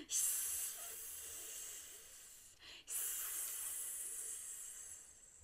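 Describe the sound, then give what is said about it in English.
A voice imitates a snake's hiss: two long, steady breathy hisses separated by a short pause for breath, with no talking. “It's a snake! Can you get your hands out slithering in front of you and do a hiss for me?”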